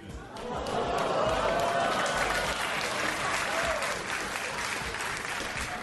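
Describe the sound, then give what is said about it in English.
A large crowd lets out loud, mixed booing and shouting that blends into a dense, steady wash of applause, sustained at a high level for about six seconds with no individual voice standing out. “I love the booing into applause.”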